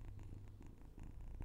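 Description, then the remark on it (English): A kitten purrs steadily into the microphone, a continuous low rumbling vibration with a gentle pulsing rhythm, loud and intimate, with no talking. “Burr into the mic.”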